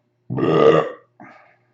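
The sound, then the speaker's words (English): A loud, drawn-out burp with a deep rumbling tone, followed by a shorter, softer second belch trailing off. Isolated, with no talking. “And with that fucking burp, let's start fucking winding down, getting the fuck out of here.”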